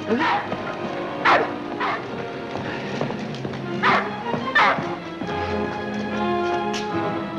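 A dog named Corky barks five times in loud, sharp bursts, spaced irregularly, over a steady background of sustained musical tones, with the barking stopping for the final couple of seconds.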